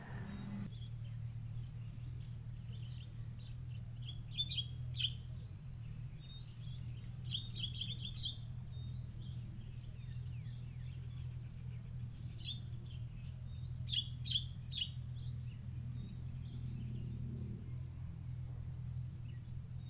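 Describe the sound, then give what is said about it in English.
Birds chirp and twitter in short, scattered bursts over a steady low rumble, their calls light, returning every few seconds with no voices present. “If you find yourself at any time in the meditation back among the birds, just imagine them flying away, quiet, leaving you quiet again.”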